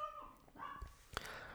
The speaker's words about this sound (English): Dogs barking.